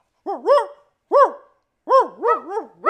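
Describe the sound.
A person imitates a dog barking at a real dog, with a quick series of loud woofs, starting with a pair, then a single bark, then a faster run of three or four.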